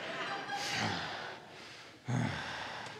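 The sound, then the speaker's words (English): A voice imitates a child breathing heavily over someone's face, two long breathy inhales and exhales, airy and rasping with a slight snort, no words spoken. “He's standing next to me, just breathing over my face.”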